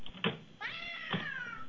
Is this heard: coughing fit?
no